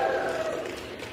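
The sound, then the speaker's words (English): A crowd of legislators cheers together for Hakeem Jeffries during a vote, in a steady, sustained roar of many overlapping voices, fairly loud and even throughout, with no single voice standing out. “Look at that, cheering together.”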